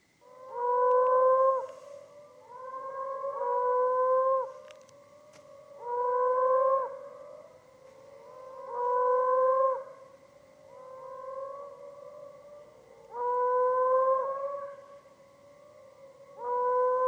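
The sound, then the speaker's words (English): A moaning frog (moaner, Helioporus aeri), a common ground-dwelling burrowing frog of the Perth area in Australia, calls repeatedly. It gives a series of long, low, mournful moans with a hollow, howling tone, each about a second or two long and spaced by short pauses, with no talking. “So this is the moaning frog, or moaner, the Helioporus aeri, if you're paying attention to the scientific names.”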